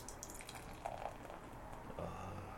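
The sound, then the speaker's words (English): Beer, a clear golden ale, pours steadily into a glass, a soft continuous splashing with a few brief gurgling bubbles, fairly quiet throughout with no voices. “And the pour.”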